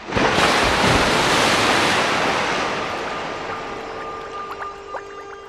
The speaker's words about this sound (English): Unfortunately, though, the roof immediately gave way under his weight, and he fell through it and into the foul, fetid depths of the shippit below with a nauseating splash.